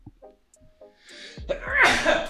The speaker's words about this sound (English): God bless you.